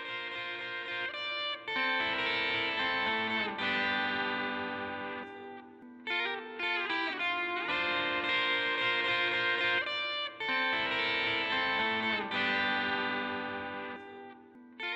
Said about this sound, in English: Next is another melody idea that has two harmonizing parts. This one is a little busier and messier than the first one and sort of acts as a counter melody.